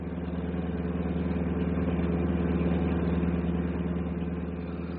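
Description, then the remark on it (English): A bus engine drones steadily at idle, a low, even rumble that holds constant throughout with no voices or other sounds on top. “you're snoring louder than the bus motor.”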